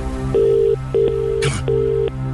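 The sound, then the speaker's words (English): Repeated electronic tone bursts from an outgoing telephone call to a different number, steady pulses of ringing over a low line hum, with a sharp click partway through and no talking. “All right, here's one for us now. Six. Different number. Answer your phone. Answer the phone.”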